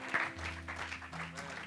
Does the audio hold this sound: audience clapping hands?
yes